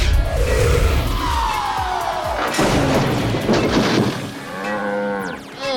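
A runaway train, Mighty Mila, crashes through a fence with a loud crash and rumbling impact, followed by a cow mooing with a long, drawn-out low call amid noisy clattering debris.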